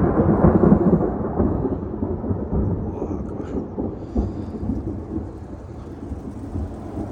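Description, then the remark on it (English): The echo of a very loud thunderclap that struck close by: deep, rolling thunder rumbles on for several seconds, slowly fading, with steady rain hissing in the background. “So I started recording a video right after that. And so I caught not the thunderclap, but the echo of it.”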